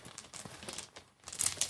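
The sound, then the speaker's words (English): Rummaging through a pile of dice while searching for a red four-sided die: a quick run of small clicks and rattles with crinkly rustling, picking up and getting louder toward the end. No voices are heard. “Get that dice ASMR going for the podcast.”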